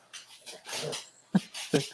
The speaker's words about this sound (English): I got my big dumb dog right here. Is that Buck? Yeah, he can't. I don't know what he's doing.